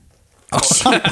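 After a brief quiet moment, Imperial IPA beer suddenly pours right up against the microphone, a loud, fizzy, splashing rush that carries on steadily to the end.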